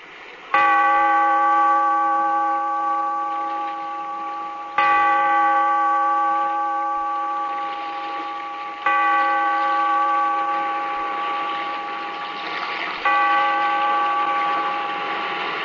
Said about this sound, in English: Bellkeeper, toll the bell so that all may know we are gathered again in the Weird Circle.